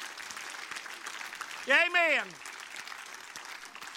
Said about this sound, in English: Applaud him real loud on his birthday. Hallelujah.